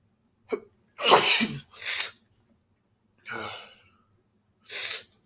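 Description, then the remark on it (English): Several short, sharp sniffs from someone in a freezing basement, not from illness, come in irregular bursts, about five in all, each a breathy hiss of air drawn through the nose, with brief silences between and no talking. “My bad, I keep sniffing.”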